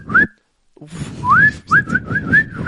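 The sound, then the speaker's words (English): A person whistles a catcall-style whistle: a short rising note, a pause, then a longer upward swoop followed by a quick run of wavering, tune-like notes, with breathy noise underneath. “Is that the only whistle for catcalling?”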